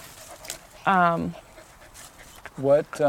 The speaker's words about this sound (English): Hi, this is my dog. Hello, Logan. Hi, Logan. You're breathing very hard.